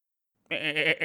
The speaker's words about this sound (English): I wasn't calling for him, but, you know, what's up there, little goats?